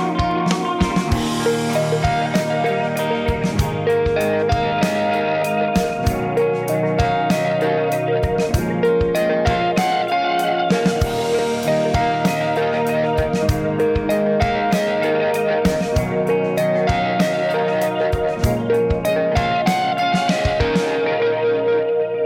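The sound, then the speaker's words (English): An electric guitar played through a Keeley Eccos tape delay pedal, with steadily picked notes and chords trailing into repeating echoes. The tone is full and slightly driven, playing continuously with no one talking. “It's a Keeley. Oh. A delay.”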